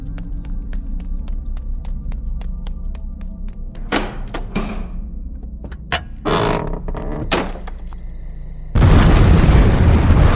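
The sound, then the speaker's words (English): An abbey is blown up: several heavy explosive blasts go off in close succession, each sharp and booming, then give way to a loud, steady roaring crackle as the resulting large fire takes hold. No one speaks. “I believe that the Abbey and its demonic legion was destroyed by the explosion and the resulting fire.”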